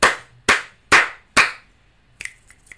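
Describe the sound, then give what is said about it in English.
Four loud, sharp hand claps given as a rating for a song, in an even rhythm, each with a bright burst and a short decaying tail, followed by a few quieter, lighter finger snaps. “Four claps.”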